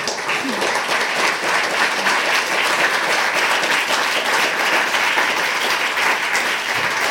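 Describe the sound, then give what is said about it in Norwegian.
Sustained audience applause, a dense, steady wash of many hands clapping at even loudness throughout, with no voices standing out above it, as an audience at the Litteraturhuset literature house in Norway welcomes its daily manager. “Så gi alle sammen en varm applaus.”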